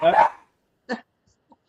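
A dog named Rudy barks as people come home: one loud bark at the start, then a second sharper bark after a pause, followed by a faint brief yip and the onset of another bark.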